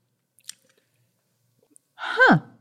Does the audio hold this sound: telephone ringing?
no